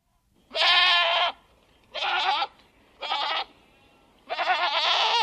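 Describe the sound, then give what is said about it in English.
A goat bleats four times in a row, loud, each call a wavering, nasal cry lasting about half a second to a second, separated by short pauses with no talking. “Or it was just a goat in the background, who knows?”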